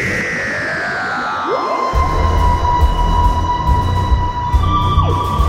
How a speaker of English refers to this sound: That sound you heard was the gears of a little-used hype machine grinding and then roaring into life